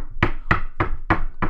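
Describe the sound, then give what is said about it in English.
Five evenly spaced, fairly loud knocks on a wooden table, sharp raps in a steady rhythm with no voices or other sounds around them. “Oh, could that be a knock at the door and not on the table?”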